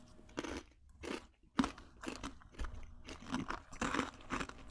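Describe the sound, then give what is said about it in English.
Loud, repeated crunching and chewing of Takis rolled tortilla chips taken from a purple bag, with sharp brittle bites followed by a steady, uneven rhythm of mastication, and no talking. “And pull out what historians are calling the twist up of death, known as the Takis. All right, let's eat one.”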